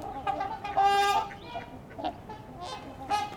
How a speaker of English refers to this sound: I think that was a herring gull.